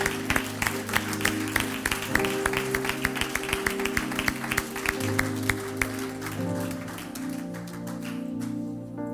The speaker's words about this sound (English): Give a round of applause because God is in this place.